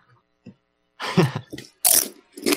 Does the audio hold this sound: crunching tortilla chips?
yes